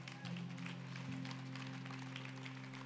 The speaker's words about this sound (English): If you are here, you can clap.